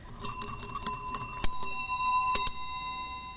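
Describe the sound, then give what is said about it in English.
A dinner room bell, shaped like a fully enclosed helmet, rings, struck about eight times in a quick, uneven rhythm, its bright metallic tone lingering and overlapping between strikes, with no voices. “And one of them is the dinner room bell, which we happen to have audio of.”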